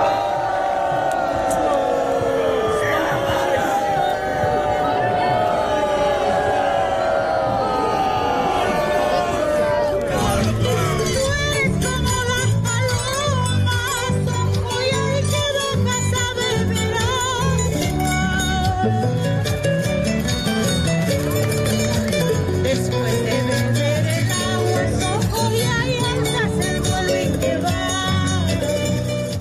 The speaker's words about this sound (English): While the Birds Aren't Real protesters were shouting and laughing, they were also completely oblivious to their counter-protesting of a serious cause.